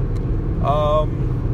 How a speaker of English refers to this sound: Yeah, I'm in my car, and here's the deal. I'm driving between Pasadena and Palo Alto.